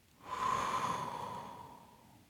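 A slow, deep breath in through the nose and out through the mouth, a long airy rush of air that swells quickly, then gradually fades over about two seconds. No one speaks.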